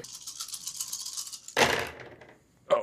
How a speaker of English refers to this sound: And this is going to be four purple dice. Four purple dice, four purple dice, four purple dice, and you make the roll.